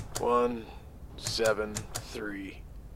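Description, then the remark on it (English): Several buttons on an elevator keypad, eight buttons numbered 0 to 7, click in quick, uneven succession as a code is entered, mixed with short electronic tones, moderately loud against a faint background hum. “Enter the code given to you.”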